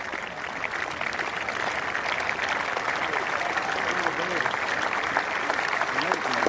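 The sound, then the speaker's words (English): A large golf crowd applauds steadily and warmly as golfer Roe walks up the 18th hole, a dense, continuous wash of clapping that holds at an even level throughout, with faint cheers and murmured voices mixed into the ovation. “A wonderful response from the crowd.”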